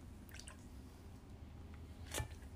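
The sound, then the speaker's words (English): Quiet wet sounds of someone drinking water: a few small sips and squishy mouth noises, ending in a sharper slurp or swallow, with no talking. “How about we take a break and drink something? Because I've noticed that sometimes when I get worked up, it's because I need water.”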